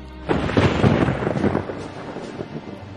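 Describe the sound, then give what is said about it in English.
A loud thunder crash sound effect rumbles and crackles for about a second and a half, then trails off into a low, fading rumble with no voices present. “I finished in a crash of lightning.”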